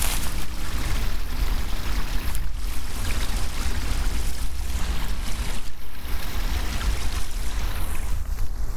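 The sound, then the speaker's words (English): A steady, unbroken rush of running stream water, full and fairly loud, with a deep low rumble beneath a bright hiss and no voices. “The sound of the running stream begs to be explored, going off the beaten track to investigate.”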